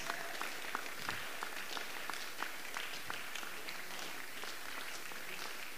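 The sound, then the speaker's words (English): An audience claps their hands in a dense, sustained burst of applause, many overlapping claps filling the room steadily at moderate volume with no talking. “The way you're clapping is.”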